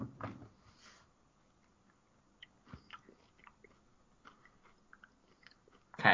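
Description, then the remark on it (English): Chewing crunchy food with milk, with scattered crunchy bites and soft wet mouth sounds, irregular and fairly quiet, ending in a louder burst near the end. “He's still chewing.”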